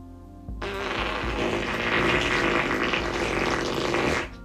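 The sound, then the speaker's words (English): A long, loud fart sound, a raspy, sputtering buzz that holds steady for about three and a half seconds before cutting off abruptly, with no talking over it. “And Medusa was mad, and so she stuck her butt in the bully's face and farted like super loud.”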